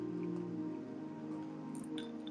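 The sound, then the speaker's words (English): Someone drinks water, with soft wet sips and swallowing sounds over a steady low hum. Nobody speaks. “Let me drink some water because it's good to me.”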